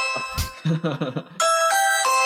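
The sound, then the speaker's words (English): Brief muffled voice-like sounds, then a doorbell rings out loudly for someone at the back door, with bright, sustained chime tones that shift pitch a couple of times and hold to the end. “Why, there's somebody at our back door. Let's answer the door”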